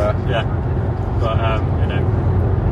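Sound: car interior road noise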